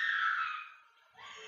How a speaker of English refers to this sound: Let's hear that lovely screaming again, shall we?